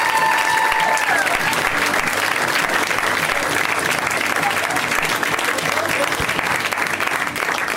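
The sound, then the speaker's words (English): A crowd applauds steadily, a dense, loud wash of clapping that holds its level for the whole stretch with no talking over it. “Please, a round of applause for Claire O'Kane.”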